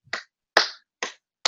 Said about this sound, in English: but that's my slow clap. That's well done.